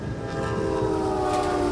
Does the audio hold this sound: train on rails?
yes